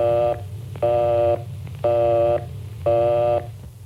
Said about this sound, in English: If the line is busy, you'll hear this busy signal.